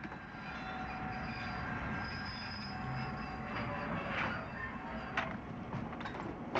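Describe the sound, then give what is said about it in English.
A train rolls steadily along the rails with a constant low rumble, faint metallic squealing from the wheels and a few sharp clanks near the end. No one speaks. “I think we took the wrong train.”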